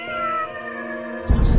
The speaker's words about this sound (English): Oh, hello, kitty. You're so pretty with your shiny black fur. Yeah, I bet if you could talk, you could tell me a lot about this place.